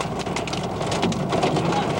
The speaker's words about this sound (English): Hold it, hold it, hold it, hold it. What? We've got large hail. Large hail. Trying to get so we can block this.